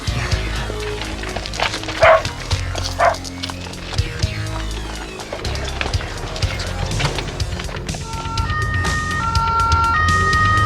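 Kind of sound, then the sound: vehicle, police car siren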